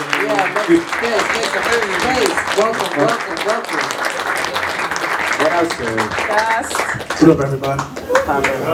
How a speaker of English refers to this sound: Let's give a warm round of applause for …. Hey. Clap it up for ….